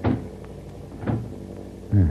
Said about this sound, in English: Now, I am very sorry to leave such pleasant company, but I would feel safer if I locked myself behind this door.